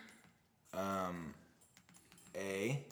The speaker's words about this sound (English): Hey, while he's typing that in.